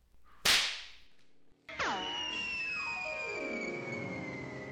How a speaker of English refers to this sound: I'll be able to hang on by this arrow line. If it hits right. Straight through one of the plane wings whizzes the steel barb. And the Master Bowman's sudden descent is checked.